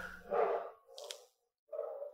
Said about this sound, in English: Do you hear my dogs? I do. They're having a great time. They are. We'll just leave that in. They're barking at somebody, which they do all the time.